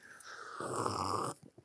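A loud, drawn-out slurp of hoppy beer after a toast, an airy, bubbling hiss lasting under a second, followed by a couple of faint wet clicks. No one talks.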